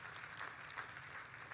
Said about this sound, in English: Somebody give a little clap offering of praise to our Lord God.